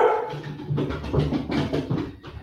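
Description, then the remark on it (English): A dog barks excitedly in a quick, steady run of sharp yaps, fairly loud, with no voices alongside. “See, even the dog's excited.”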